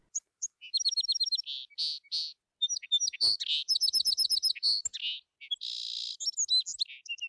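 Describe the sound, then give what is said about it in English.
A sparrow sings a lively song, with rapid chirps, trills and buzzy notes in quick bursts, continuing steadily for several seconds with no talking. “Little Bird puffed up with pride, and she flew down to the ground right next to the man and sang this blind man a little song”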